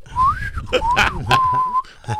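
A thin, wavering whistle from a person breathing hard through one nostril because they can't breathe, sliding up and down in pitch, broken by a few sharp, breathy puffs of air. It's fairly loud, with no talking.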